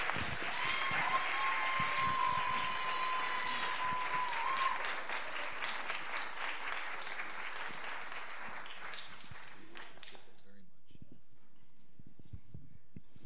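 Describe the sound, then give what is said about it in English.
An audience claps in honor of those just prayed over, in a steady, dense burst of applause that holds for several seconds, then thins out and fades to silence near the end, with a brief high tone sounding early on. “All right, let's give them a little clap in honor.”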